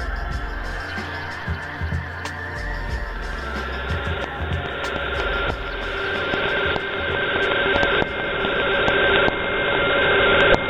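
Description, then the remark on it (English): A steady wash of radio static with warbling tones and sharp crackles, like a shortwave broadcast being tuned in, growing gradually louder over several seconds with faint murmuring underneath; shortwave reception of a broadcast from Flagstaff, Arizona, USA. “In the studio, and she sent it to us, and so you can hear it the way we sound in the shortwave medium, and I like that.”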